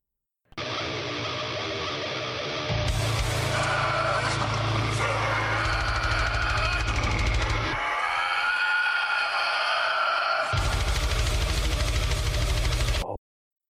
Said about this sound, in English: This is a Tasmanian devil.